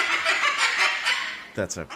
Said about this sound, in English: That's a cockatoo. Is that a cockatoo? Yeah.